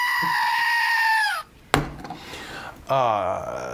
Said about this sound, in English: That means I can own things like screaming goats.